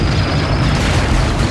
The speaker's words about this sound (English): Then I saw what made that final explosion, or rather, series of explosions.